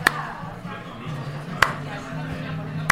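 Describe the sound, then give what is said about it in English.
A slow hand clap: three sharp, single claps spaced well over a second apart, crisp and fairly loud, over a low murmur of voices. “Something that I do miss is the slow hand clap.”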